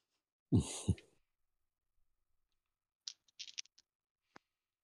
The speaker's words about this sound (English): Well, let's see what I get. I'm gonna roll it with real dice.